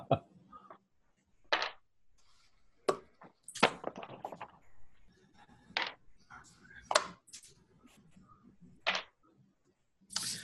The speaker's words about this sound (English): Sound of dice rolling.